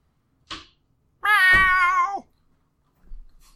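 A cat gives one loud, drawn-out meow lasting about a second, with a steady, slightly wavering pitch that dips at the end. A brief scuffing noise comes before it and soft shuffling follows.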